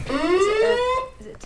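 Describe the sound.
A building fire alarm sounds loud, one rising electronic whoop that holds for about a second before dropping away, with faint voices stirring afterward. Fire has been reported in the building and it is not a test.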